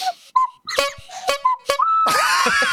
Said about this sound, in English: What, is that a slide whistle? What's that? It's an ocarina. Ah, it's pocket ocarina. The best I could do.